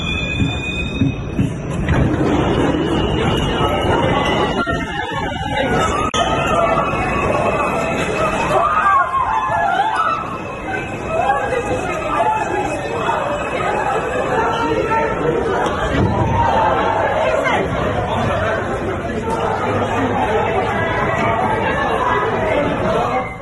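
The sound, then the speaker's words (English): Crowd noise in a New York City subway after a man in a gas mask shot people and an explosion went off: many overlapping voices talking and calling out continuously, over a steady rumble of a train with occasional high squeals from its wheels. “If you are not paying attention to the news, some guy in a mask, in a gas mask, starts shooting 16 other people, and there's an explosion that goes on in the subway.”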